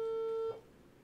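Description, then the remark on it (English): A phone's ringing tone sounds once, a steady, close electronic buzz lasting about half a second, then cuts off into quiet background hiss. No one answers. “answer your goddamn phone, you bitch ass.”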